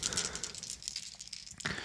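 Dice rattle and clatter across a surface, a quick run of small, sharp clicks lasting under two seconds, fairly quiet, with no voices.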